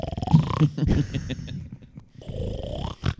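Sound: imitated snoring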